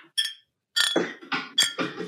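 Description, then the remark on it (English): Glass beer bottles are clinked together several times in quick, uneven succession, each bright ringing knock fairly loud, with short pauses between and no voices. “It's like wind chimes, but with beer bottles.”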